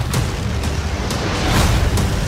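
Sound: movie trailer explosions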